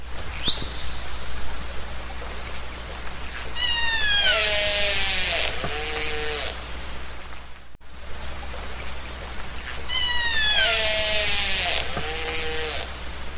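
Killer whale vocalizations: two matching bursts of high, wavering squeals and descending whistle-like tones, each lasting a few seconds, over a steady hiss and a low hum, with no talking.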